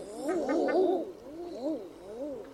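Common eiders give soft, moaning cooing calls that rise and fall in pitch, several overlapping at first, then a few single, slightly fainter coos spaced apart, with no one talking.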